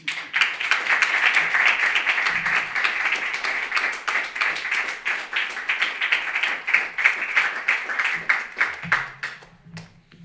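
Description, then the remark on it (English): Steady audience applause for a poet exiting after a reading fills the whole stretch, dense overlapping claps holding loud and even before thinning slightly near the end, with faint low voices murmuring underneath. “A big dramatic exit to applause.”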